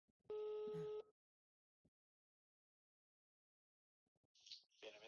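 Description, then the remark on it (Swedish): A single electronic phone ringback tone, as a call is placed to a friend who is a psychologist, sounds for about a second, a steady buzzy purr with stacked harmonics, followed by near silence, a few faint clicks, then brief noisy rustling near the end. “Så jag tänker att vi ringer till honom.”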